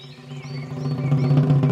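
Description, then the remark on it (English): A voice mimics a little bird with quick, high chirping whistles over a steady low hum, growing gradually louder across the short stretch. “That little birdie was me.”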